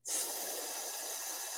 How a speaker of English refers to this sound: And then close your mouth, close your teeth, and then breathe out through your teeth, making a hissing sound.